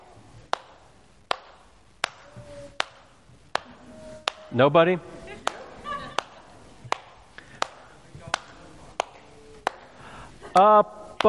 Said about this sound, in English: I want to sing a song for you in my head. You trust me, nobody wants to hear this, but I'm going to clap the tune for you to see if you can maybe recognize the song as I'm clapping.